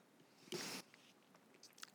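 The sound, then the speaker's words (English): A short slurping sip of a 9% Belgian triple style beer lasting under half a second, followed by a few faint wet clicks and swallowing sounds. No one speaks. “So with that being said, let me have the first sip here.”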